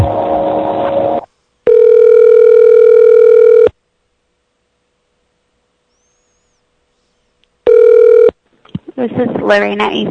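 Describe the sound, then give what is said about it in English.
An outgoing Skype call's ringing tone sounds twice, a steady electronic buzz lasting about two seconds, then a long silent pause before a shorter second ring. Someone speaks before and after. “Let's try to call them via Skype, because when Skype shows up, it always shows up as an unknown number.”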